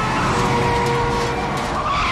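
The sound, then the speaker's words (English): A car engine roars hard, with tyres screeching and skidding as the vehicle surges forward at speed down an alleyway toward a brick wall at its end, loud and sustained throughout. “And puts his foot down towards the end of an alleyway that they're on, which is like a brick wall.”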